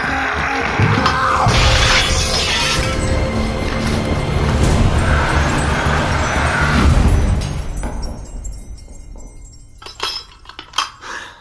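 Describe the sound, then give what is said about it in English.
A ground door mirror shatters in a long, loud crash of breaking glass that roars for several seconds, then fades into scattered, sharp tinkles of shards falling and settling. “Nero shattered the ground door mirror we were holding and fell into the water well.”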